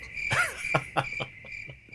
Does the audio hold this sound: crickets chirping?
yes